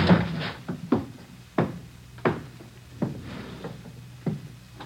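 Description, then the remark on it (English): A door is kicked down: about seven heavy, booming thuds land at a steady pace, each loud with a short ringing decay, and no voices. “I never thought I'd have to kick down a door to get you.”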